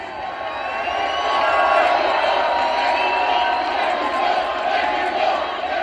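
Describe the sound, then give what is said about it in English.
A large crowd cheers and roars steadily at a wrestling event in Los Angeles, a dense wall of voices with scattered shouts and whoops rising and holding loud throughout. “Real talk, what an electric atmosphere here in Los Angeles.”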